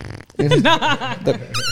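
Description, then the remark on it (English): A short, wobbly fart noise, apparently made with the mouth, sputters loudly for about a second with a buzzy, rising and falling pitch, then a brief squeaky tone follows. “How does he do the fart noise, though?”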